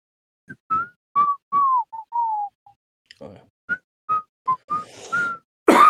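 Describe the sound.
Someone whistles a short, jaunty melody, the rooster's tune from the film Robin Hood: a string of clear, separate notes, some sliding downward, rising and falling in a bouncy rhythm, ending with a burst of breathy noise.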